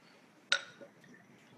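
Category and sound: household object, beer glasses clinking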